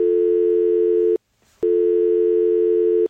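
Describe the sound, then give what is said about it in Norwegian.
A steady electronic telephone ringing tone sounds in two long, loud bursts separated by a short pause as a call is placed, before voicemail answers, with no voices. “Men jeg foreslår at vi bare ringer, og så ser vi hva som skjer.”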